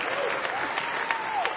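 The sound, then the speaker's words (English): Audience applause, a steady dense patter of many hands clapping at a fairly even level, with a faint murmur of voices mixed in. “I never complimented myself and got applause before.”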